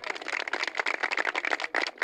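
A soft golf clap sound effect played in by a producer: a quick, steady patter of light hand claps overlapping into a brief, polite round of applause lasting about two seconds, with no voices.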